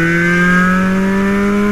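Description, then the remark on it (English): A Chevrolet Corvette engine roars steadily and loudly with exhaust crackle, its deep droning tone climbing slowly in pitch as it revs, with no voices over it. “Listen to that crackle.”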